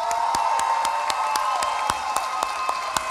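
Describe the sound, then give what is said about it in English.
A crowd bursts into steady, sustained applause as a band are introduced, with many hands clapping at once and cheering voices woven through, holding at a fairly loud, even level throughout. “So give them a round of applause, y'all.”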